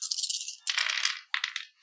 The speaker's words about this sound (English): Alrighty, I'm gonna do that. I'm gonna roll dice to decide an outcome.